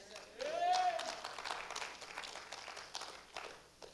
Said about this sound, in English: Yeah, the clap's getting lower and lower.